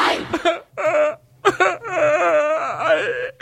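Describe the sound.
A young woman sobs and wails in long, wavering, high-pitched cries broken by short gasping pauses, a theatrical imitation of a drunk girl crying rather than real distress, heard alone without talk.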